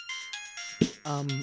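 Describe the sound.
A phone ringtone for an incoming call plays a bright, repeating electronic melody of pulsing tones, clear. A brief thump and a voice speaking come in under it near the end.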